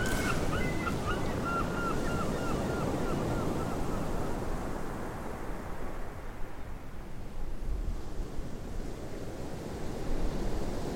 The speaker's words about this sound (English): An afternoon in October, Brighton. It's unseasonably warm. Evie, on the beach, listening to the waves.